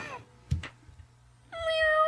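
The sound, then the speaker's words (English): A cat meows twice, clear: a short cry trailing off at the start, then after a couple of soft thumps a longer, rising meow that holds to the end. “Wow, sounds like a little kitty needs some help.”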